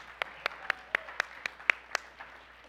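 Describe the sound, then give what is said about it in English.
Audience clapping in a steady rhythm, about eight sharp, evenly spaced claps over a couple of seconds, fairly crisp and moderate in loudness, with no talking over them. “Give a clap for Ade.”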